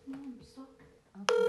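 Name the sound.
phone call ringing tone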